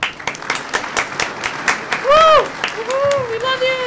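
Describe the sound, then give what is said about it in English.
A crowd claps steadily throughout, a dense patter of hands, while loud rising and falling whoops and cheers break out over the applause toward the end. “Add the cheering in the back.”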